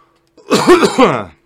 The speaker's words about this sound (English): Sorry about the cough there.